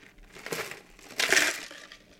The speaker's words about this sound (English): As I drink some water.